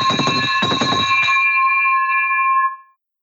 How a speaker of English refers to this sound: I love it. I love it. Victory bell engaged.